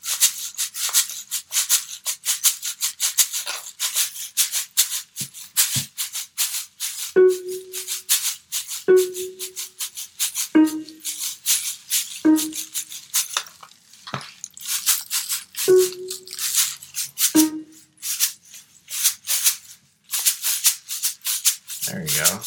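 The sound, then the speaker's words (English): A rain stick shaken in a quick, steady rhythm, producing dense bright rattling of tiny beads in repeated bursts, with a few short hollow tonal knocks mixed in. “Now, by gravity, so you have to shake it. And here you can control your rhythm a lot easier.”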